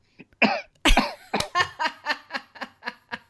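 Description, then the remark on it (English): A loud burst of coughing, a couple of harsh coughs followed by a quick rhythmic run of short hacking throat-clearing sounds, with no talking. “Wow, I got a frog in my throat there.”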